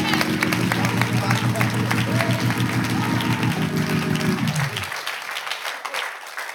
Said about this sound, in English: Clap your hands right now.